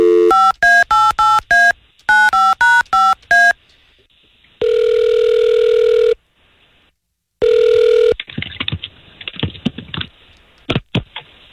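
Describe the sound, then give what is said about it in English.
A quick run of touch-tone beeps as a number is dialed, then two long, steady ringing tones on the line, followed by clicks and rustling as the call connects. “All we're going to try to do here is get him on the phone and see if we can't talk to him, okay?”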